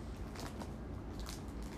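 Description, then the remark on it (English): Crunchy munching on a piece of a candy bar, a few crisp bites and chews with soft crackling in between, fairly quiet and without any talking. “That'll just be the next piece I eat. Ouch. When I do munch.”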